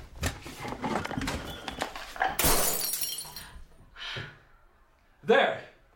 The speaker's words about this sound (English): There is glass everywhere. I can't believe you just did that. I told you something needed to be done. Do you have any idea how much windows cost?